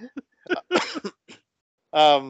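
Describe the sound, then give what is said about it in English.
A few short, throaty coughs in quick bursts, followed by a brief voiced sound at the end. “A little cough there.”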